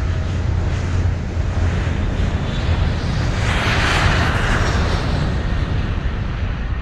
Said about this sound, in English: The plane took off, heading home to Pig Town.